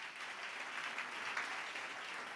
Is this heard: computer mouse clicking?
no